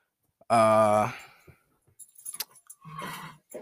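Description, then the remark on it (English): A dog knocks objects over: a scatter of light clattering and metallic clinks, following a loud, brief tonal cry. A voice murmurs briefly at the end. “My dog is knocking stuff over.”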